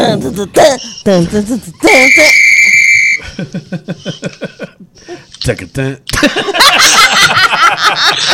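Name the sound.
whistle being blown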